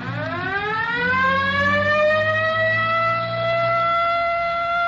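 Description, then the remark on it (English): A police car siren winds up from a low pitch into a loud, sustained wail that holds steady, with a low engine rumble underneath and no talking, as the car heads down toward Rosecrans. “Better hit the siren.”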